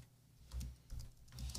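Soft clatter of computer keyboard typing, keystrokes arriving in three short bursts with brief pauses between, fairly quiet and close, no voices.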